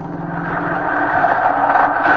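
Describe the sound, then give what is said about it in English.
A bus engine rumbles steadily, a low droning hum with a slight rise in loudness as the bus pulls in and idles, no voices. “Ah, the bus.”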